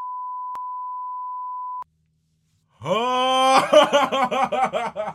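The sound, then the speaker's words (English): A steady, high-pitched censor bleep holds for nearly two seconds, then cuts to a short silence before loud, animated voices burst in. “Beep!”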